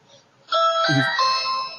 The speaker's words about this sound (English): He rings the doorbell.